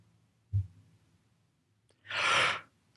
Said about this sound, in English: No, I yawned. I yawned before the After Dark. That's unusual. It's weird.